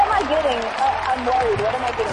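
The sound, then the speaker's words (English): Steady audience applause fills the whole stretch, a dense crackle of many hands clapping, while voices talk over it throughout. “You just like got a long ass applause for what you did.”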